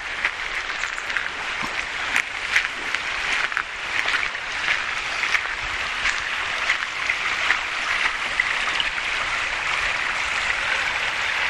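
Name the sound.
small stream flowing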